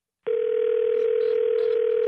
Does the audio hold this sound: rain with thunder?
no